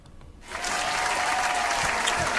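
Dense clapping starts after a brief quiet moment and holds at a steady, loud level, a broad crackling wash of many hands with no voices over it.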